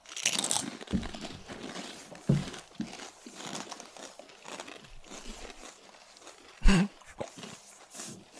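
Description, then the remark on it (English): Loud, crunchy chewing of crisp kettle-cooked potato chips on a microphone, with irregular sharp crackles and crinkling bursts and one especially loud crunch near the end, with no talking. “So just a warning for anyone who hates hearing chewing on mic.”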